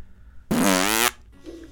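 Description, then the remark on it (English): A loud, buzzy fart-like noise lasting about half a second, rough and sputtering with a wavering pitch, likely made by someone blowing raspberries rather than a real fart, made while trying to imitate an elephant trumpeting, followed by quiet murmuring. “That's another sound. That's a stinky sound.”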